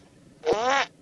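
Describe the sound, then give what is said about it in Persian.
A single loud, buzzy fart lasting about half a second, with a sharp onset and a raspy, tonal quality, with no talking over it. “ریدی که بچه مسلمون.”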